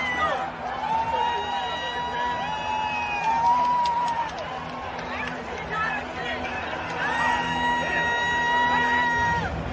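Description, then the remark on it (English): A large crowd screams and roars in celebration of an overtime game-winning goal, loud and sustained for the whole stretch, with high yells and whoops rising above the dense wall of cheering and chatter. “I love it because literally he doesn't even realize it until I think some other people started screaming, it's in, baby, and his reaction is just priceless.”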